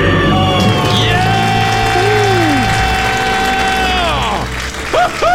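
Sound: celebratory scream and cheering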